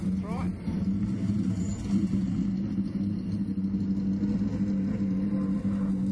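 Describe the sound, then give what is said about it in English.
A 1969 Camaro, the pole sitter's car of Andrew Medici at Bathurst, rumbles steadily and loudly, a deep idling throb with a faint mechanical whine that holds the whole time without revving up. “Oh, look who we have here. The good old 69 Camaro.”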